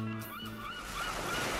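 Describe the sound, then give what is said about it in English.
Ocean surf washes in with a broad, hissing roar that swells louder toward the end, with a brief honking bird call near the start and no one talking. “Oh, I do so love the ocean. I wish we could stay here forever.”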